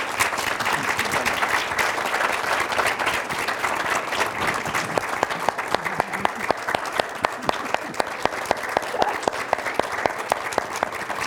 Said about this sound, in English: Let's just give a round of applause